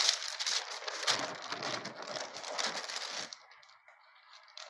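A crisp rustling of a blank sheet of paper being handled and laid down during touch drawing, lasting about three seconds before settling into near quiet with a faint steady hum.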